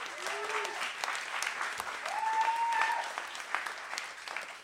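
An audience breaks into sustained applause, a dense steady patter of clapping that holds at a fairly even level for several seconds, with a faint whistle-like tone rising briefly through the middle.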